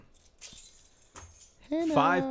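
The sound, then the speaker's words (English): Keys jangle in two short, bright metallic bursts, with a brief pause between them, before someone begins talking loudly. “Just pick up your goddamn keys.”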